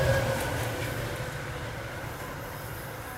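A train rolls steadily along the rails, a continuous low rumble with faint tonal hums and a slight metallic whine, fairly loud, with no voices.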